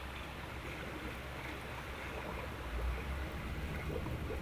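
Lake water splashing and churning in a steady, continuous wash of noise, moderately loud, with no voices and no clearly separate splashes standing out, as people are in the cold lake water at night.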